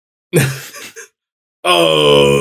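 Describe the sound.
A voice imitates Brandon straining while taking a shit in a tin can: a short, low guttural groan broken into a few grunting pushes, a pause, then a long, loud, sustained strained moan with a buzzy, harmonic-rich tone.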